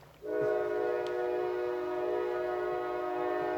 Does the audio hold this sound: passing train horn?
yes